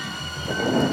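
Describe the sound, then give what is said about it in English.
Steady rain hisses while a low rumble of thunder swells up halfway through, growing louder and filling the brief moment with a deep, rolling roar. No one speaks. “I feel a storm brewing.”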